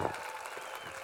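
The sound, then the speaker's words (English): An audience gives the Lord a clap offering, a dense, steady burst of applause, a broad wash of many overlapping hand claps at an even level throughout the short moment. “Give the Lord a clap offering, would you?”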